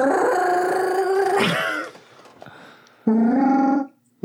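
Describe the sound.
During the fantasy live-play show Quid Pro Roll, a person imitates a Wookiee growl, two loud, rough, warbling howls, the first about a second and a half long, the second shorter after a brief pause.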